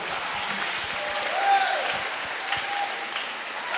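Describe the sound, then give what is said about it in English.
An audience claps their hands for the Lord, a dense, steady burst of many hands lasting the whole stretch, loud, with faint voices mixed in beneath the clapping. “Clap your hands for the Lord.”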